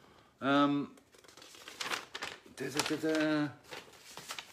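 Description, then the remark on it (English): Sheets of paper rustle and crinkle in scattered bursts, broken by a couple of drawn-out hummed vocal sounds. “Goes to the paper.”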